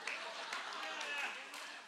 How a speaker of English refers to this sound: You're applauding for diabetes.